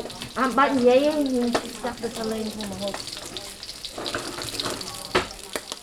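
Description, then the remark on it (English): Cambodian food sizzles steadily in a pan in a kitchen, a continuous crackling hiss broken by sharp kitchen clinks and knocks. A voice speaks briefly over the frying near the start. “On any given day where they're having these appointments, they're cooking food in the kitchen.”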